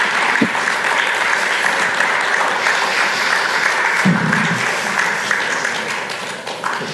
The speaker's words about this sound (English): God, thanks, everyone. Just give a round of applause.